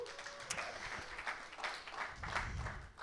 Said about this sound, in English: Yeah, you can clap. That's awesome.